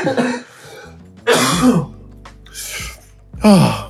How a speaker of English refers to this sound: I expect that to still be in. I'll leave that in. Every time one of us cough, I expect that to stay in. Yeah, we'll keep that one.